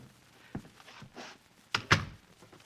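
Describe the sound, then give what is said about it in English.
A door being closed: a soft bump and brief shuffling, then two sharp, solid thuds in quick succession as it shuts and latches, with no talking. “Close the door.”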